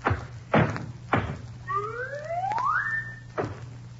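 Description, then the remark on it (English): A basketball is dribbled, bouncing three times in a steady rhythm, then a long rising whistle follows it through the air as it is shot at a garage front used as the basket, before one more thud lands. No one speaks. “Dribble.”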